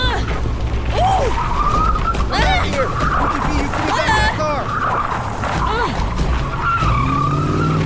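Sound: car speeding away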